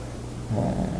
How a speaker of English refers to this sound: She was tearing up the bed over there. This is my dog. Hey, stop it, Sky. Don't do that.